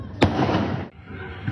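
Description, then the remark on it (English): A single sharp gunshot cracks out loud, its echo rumbling and fading over the next half second, followed by a fainter pop near the end amid low background noise, as attackers on a residential street shoot at a passing car. “kicking doors and shooting at a passing car.”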